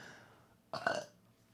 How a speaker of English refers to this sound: Third burp of the day. Hold on, fourth. These are like Homer Simpson burps.